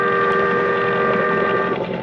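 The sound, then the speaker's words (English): A loud boat siren blares in one steady, sustained tone with a rich, droning pitch, holding unbroken for the whole couple of seconds over a low rumbling background, from a boat passing in fog in San Francisco Bay. “But the boat siren, crying its warning, drowned out my shouts.”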